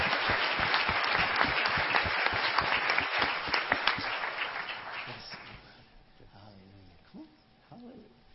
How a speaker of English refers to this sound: This young man just got in. He's serving in Iraq. And he's in right now, and we've been praying for him since he left. And I tell you, let's give him a big hand for serving our country.